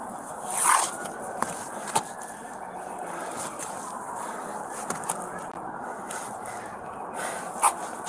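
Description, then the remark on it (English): Slow, controlled tactical breathing of a police officer taking cover behind a pillar during a shooting, with breaths rising and falling over a steady background hiss, a couple of louder rushes of air, and a few sharp clicks. No one speaks. “Listen to the tactical breathing of the officer.”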